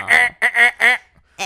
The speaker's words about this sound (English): That should be the buzzer for the goat.